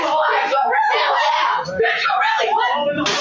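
A Black girl in a classroom screams and shouts loudly and almost without pause for several seconds, her voice strained, with a brief dip midway before the yelling surges again.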